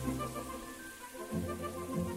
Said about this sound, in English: Let me just get in the shower. Oh, there we are. There we are, yes.